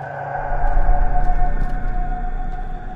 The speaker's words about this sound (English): The creature then stepped into the remaining light, towering over 9 feet tall, and let out a bellowing scream.